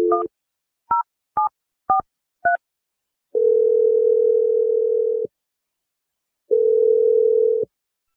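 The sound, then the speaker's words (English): Five quick touch-tone beeps as a phone number is dialed for a call from the radio show Brooke and Jeffrey in the Morning, followed by two long, steady ringback tones separated by a short silence. Clear, with no voices. “I'm going to dial Lena's phone number right now.”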